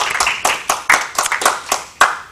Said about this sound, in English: Hooray. I think that's the last time you have to do that. So round of applause for you.